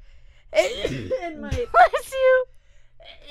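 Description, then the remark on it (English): A single sneeze comes after a wavering, voiced build-up, followed by a few brief vocal noises and murmurs. “Bless you.”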